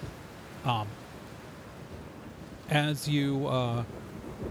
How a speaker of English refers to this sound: There's because the trees actually do like give you a little bit of protection from the torrential downpour. Not a ton, but enough where it's actually slightly nicer to walk here than to be out by the road.